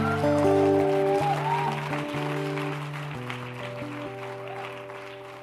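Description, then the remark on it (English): Audience applause for a speaker's word, a steady wash of clapping that slowly fades, layered over sustained organ or keyboard chords with shifting harmonies. “Can we give Dion a round of applause for that amazing word?”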